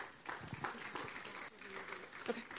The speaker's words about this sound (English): So let's give her a round of applause and welcome her up.